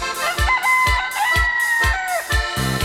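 A rooster's drawn-out crow rises and falls over music with a steady thumping bass-drum beat, loud, with no talking.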